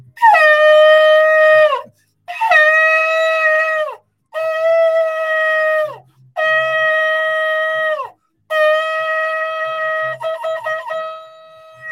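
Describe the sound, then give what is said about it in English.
A shofar sounds five long, loud, brassy blasts, each dipping in pitch as it ends. The final blast breaks into a quick series of short, wavering notes before trailing off. “Listen, God only tells us to blow the shofar for two reasons.”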